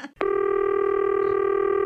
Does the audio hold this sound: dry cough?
no